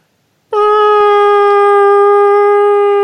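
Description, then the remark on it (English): A news-segment intro tone: after a half-second of silence, one loud, steady, buzzy electronic note with a rich harmonic edge holds unbroken to the end, with no talking. “That's the worst news beeps I've ever heard.”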